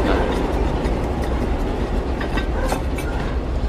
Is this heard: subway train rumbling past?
yes